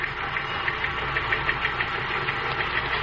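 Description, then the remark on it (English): A message machine printing an incoming message: a steady, rapid mechanical clatter with a regular chugging rhythm, continuous throughout with no voices. “That message you want is coming in on this machine over here.”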